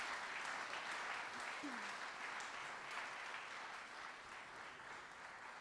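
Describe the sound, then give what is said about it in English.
A crowd claps steadily throughout, a dense wash of many hands at moderate loudness that holds for several seconds and eases slightly near the end, with faint voices mixed in. “But let's at least applaud her and say thank you so much.”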